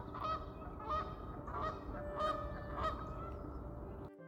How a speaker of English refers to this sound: It's at this point I'd like to introduce my constant co-host, the ducks at the lake. Just kidding.